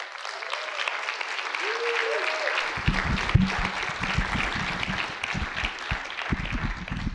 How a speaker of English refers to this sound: Give him a hand clap if you would.